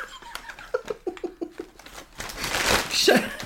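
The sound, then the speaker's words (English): Loud crinkling and rustling of plastic packaging swells in the second half, following a stretch of short, choppy voice sounds like chatter or laughter. “Let's get rid of the rustling.”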